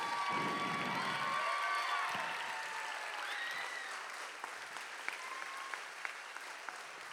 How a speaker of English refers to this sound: So she's over here somewhere, and I would love, can y'all stand up on your feet, and let's give her a big round of applause for all the work that she did this week.